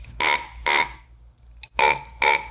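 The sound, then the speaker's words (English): A raven's autumn and spring call: four loud, harsh, rasping croaks delivered in two quick pairs with a short pause between, over a low steady background hum. “And then there is an autumn and spring sound, more like.”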